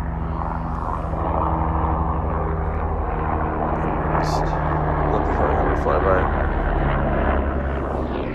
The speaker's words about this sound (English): Helicopters flying by.